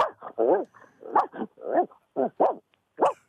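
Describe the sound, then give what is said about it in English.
A man's voice imitates a Boston Terrier's barking, a quick series of about ten short, yappy barks and yips in an uneven rhythm, fairly loud. “Okay, could you do like a Boston Terrier?”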